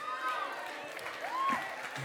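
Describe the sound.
A round of applause from a crowd for a girl who has just been rewarded, steady clapping mixed with voices and a couple of rising whistles or whoops, held at an even, moderate loudness for about two seconds.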